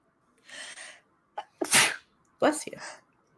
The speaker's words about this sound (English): Bless you. And bless you. Thank you.